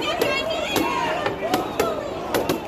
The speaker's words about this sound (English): police, federal agents, and the National Guard began clearing peaceful protesters basically just across the street. They held up shields and pushed in a line as tear gas canisters exploded.